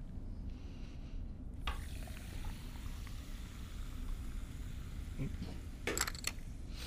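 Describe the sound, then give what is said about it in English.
Topo Chico sparkling mineral water is poured to top off lime juice in a drink, a steady fizzing hiss running throughout with a few brief clinks and crackles near the end. “So we just pour a little bit of lime juice, and then the rest we're going to top it off with the Topo Chico.”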